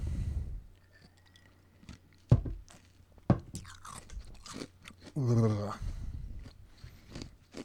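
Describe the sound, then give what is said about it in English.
Crunching of ice cubes being chewed, a series of sharp, irregular cracks and crunches with brief pauses between bites, plus a short voiced murmur partway through. “We have one last piece of ice. Chomp away.”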